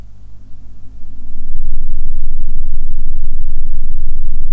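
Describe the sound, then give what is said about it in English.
A washing machine runs with a low, droning rumble that swells after a second into a steady, loud churning hum, with a faint high whine sustained over it. No one speaks. “It feels a bit weird doing this with the washing machine going on in the background.”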